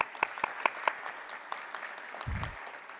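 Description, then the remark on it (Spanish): An audience claps steadily for a mathematics academic from the Universidad de Quintana Roo being introduced, a dense patter of many hands with a few sharper, louder claps standing out early on, and a brief low thump near the end. “Un aplauso, por favor.”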